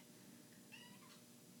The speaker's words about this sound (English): there's the kitty again.